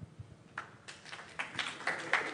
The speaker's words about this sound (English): There was like a big pause. You made people clap for that, by the way. Well, I say, let's hear it, everybody. Put those hands together for lost loved ones.